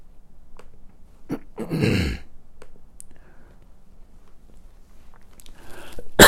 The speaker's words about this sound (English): Sorry. I hope I don't have coronavirus. You're starting to stress me out with all that cough.